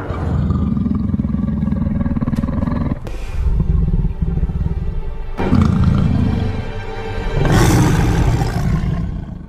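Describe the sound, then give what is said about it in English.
A lion roars loudly in several long, rumbling bursts separated by brief pauses, with deep throaty growling throughout and no talking. “Let's awaken the lion.”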